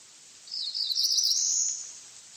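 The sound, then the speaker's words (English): A cerulean warbler sings one short, high, buzzy phrase that swells and then fades over about a second and a half, heard alone against a quiet, faintly hissing background. “The song of the cerulean warbler was once common in the forests of the eastern United States, but today the voice of the warbler is rare.”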